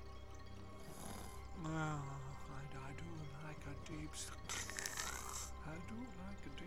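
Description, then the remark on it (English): A person pretending to be asleep in a compartment fakes snoring, with a run of raspy, breathy snorts and throaty, rumbling groans repeated over several seconds, loud. “Maintaining my fake snoring, and the occasional instance of soft flatulence for good measure, I watched as he rifled through my things, checking my papers.”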